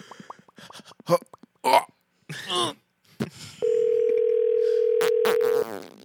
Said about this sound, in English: They're gonna think that's me. Quit farting,